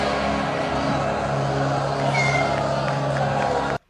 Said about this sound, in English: Did you hear that? Yeah, that little... Yeah. That little meow. Yeah. That happens constantly throughout the film. What is it? It's a cat meowing.